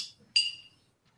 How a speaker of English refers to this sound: I would definitely recommend experience of just the way the bottle fills with the frosted glass, the cap, unzipping the cap, and then just beautifully and elegantly just opening the bottle. There we go.